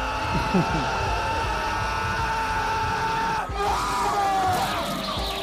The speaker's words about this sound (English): Should have just been him yelling at Hitler the whole time.